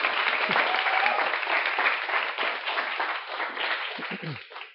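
An audience applauds to welcome two presenters from Colombia before a presentation and Q&A. Steady, dense clapping is spread broadly and holds at a fairly even loudness for several seconds before tapering off at the end, with faint voices mixed in.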